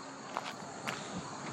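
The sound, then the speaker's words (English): Footsteps of someone walking over to get some water at a steady pace, a few soft scuffing steps with brief brighter transients over a constant hissy background, no talking. “All right, I'm going to walk over and get some water.”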